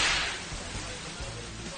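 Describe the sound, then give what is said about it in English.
A single sharp whip crack snaps at the start, loud and bright, then trails off into a fading hiss with a faint low rumble underneath. “if I ever catch you in my whip chamber again, I will not hesitate to swing my whip and crack my whip across your throat.”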